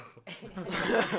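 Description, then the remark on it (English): A person vocally imitates a cat hacking up a hairball: a brief, raspy burst of throaty coughing and gagging lasting about a second. “But instead, I coughed up a hairball.”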